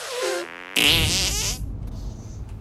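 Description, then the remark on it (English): A cartoonish fart sound effect in a video game: a buzzy, rising squeak that bursts into a louder, sputtering blast lasting under a second, then trails off into a low, rumbling hiss. No one speaks. “No, you're not forming it right.”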